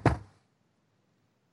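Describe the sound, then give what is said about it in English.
A single sharp, fairly loud knock on wood that dies away quickly into silence. “Knock on wood if you're with me.”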